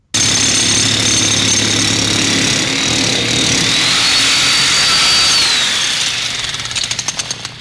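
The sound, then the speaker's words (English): Industrial music played with real tools: loud, dense mechanical clatter like power tools or a jackhammer, with a steady low drone and a rising high whine, ending in rapid metallic pulses as the noise thins out. “It definitely sounds like they're using real tools and stuff.”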